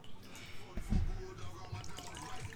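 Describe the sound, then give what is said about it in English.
Liquor poured into a shot glass, a short gurgling splash with a thicker burst near the start, against a faint murmur of voices in the background. “I'm going to pour this shot. I got to mute it because it might be a little loud on the mic.”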